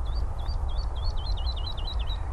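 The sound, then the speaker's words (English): A woodlark, perched on top of a birch tree, sings a quick run of high, chirpy notes that grow faster and closer together toward the end, heard over a steady low rumble of traffic. “Each time just a little variant. Faster, slower. Slower with notes in between.”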